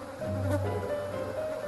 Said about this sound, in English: The interior had the same layout as home, but there was a constant hum of blowflies.